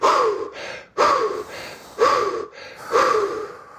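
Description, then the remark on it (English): Four deep, forceful recovery breaths after a breath hold follow one another about a second apart, loud, each a quick audible gasp of air into the top half of the lungs with no talking. “We call that recovery breathing, right?”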